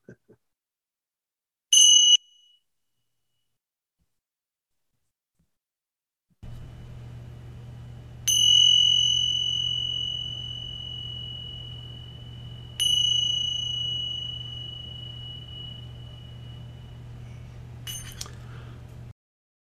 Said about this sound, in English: One more bell.